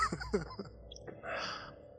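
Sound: dog snoring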